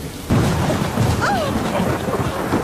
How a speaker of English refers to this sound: The lightning had hit the huge old oak tree in the garden. As the rain dampened the flames, we saw that nothing remained but a blasted stump.